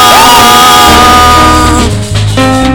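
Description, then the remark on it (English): A loud audience shouts and cheers together, a dense wall of voices with whoops rising over sustained musical tones, the crowd noise filling the whole moment without pause. “Am I hearing shouting?”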